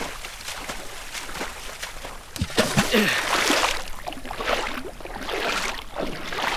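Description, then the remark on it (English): Paddles dip and pull through water in irregular strokes, with splashing and sloshing, as a small boat is paddled over toward the shore after a storm has broken. “Paddle over.”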